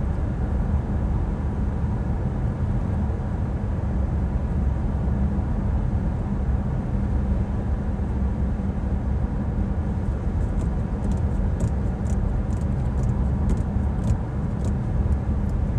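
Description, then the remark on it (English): A steady, low engine and road rumble from inside a hot, moving car as the driver is about to go deliver, constant and fairly loud throughout, with faint light ticking near the end and no talking. “This is me, y'all, in this hot ass car, about to go deliver.”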